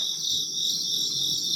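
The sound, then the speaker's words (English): A steady, dense chorus of crickets chirping continuously at moderate volume, with a constant high-pitched trill filling the whole stretch and no voices present. “I don't remember what the cricket sounds was to.”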